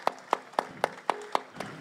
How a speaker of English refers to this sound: So shout out to him again. Clap it up for him. For sure.